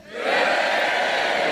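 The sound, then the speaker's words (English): A crowd lets out a loud, sustained cheer that swells within a fraction of a second and holds steady, a dense wash of many voices shouting together with no single speaker standing out. The audience is cheering to cast a vote. “By way of a poxy cheer, who doesn't?”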